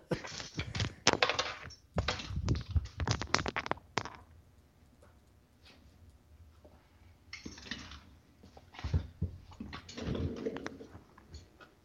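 Busy rustling and plastic clicking as earphones are handled and taken out, with bursts of clatter early on, a quieter stretch, then more scraping and tapping; no one speaks.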